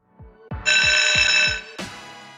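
A loud electronic buzzer sounds for about a second over a steady run of low thumping beats, then cuts off with a short final blast. No one speaks.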